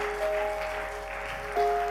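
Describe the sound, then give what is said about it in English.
A crowd applauds steadily, many hands clapping in a dense, continuous wash of sound that swells slightly near the end, with a faint sustained tone running underneath. “Can you clap for him?”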